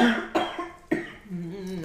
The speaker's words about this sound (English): I usually don't cough during the day. It's just at night.